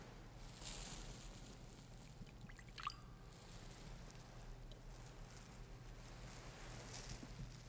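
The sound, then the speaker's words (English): A small amount of water trickles softly as it is poured into wine in a chalice, with a faint brief clink partway through, over a low steady hum. No one speaks. “By the mingling of this water and wine, become partakers of his divinity, became partaker of our humanity.”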